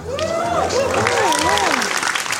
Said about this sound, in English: I know that's not good when they applaud your age. I know.